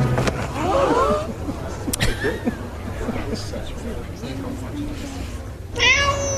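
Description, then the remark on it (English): A cat meows a few times, a drawn-out meow near the start and a sharper one at the end, over a steady low rumble with faint background murmur. “We have the means, the understanding, the technology to allow spiders to talk with cats.”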